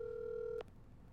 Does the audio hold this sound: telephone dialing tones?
yes